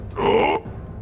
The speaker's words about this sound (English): All right, burp in their face.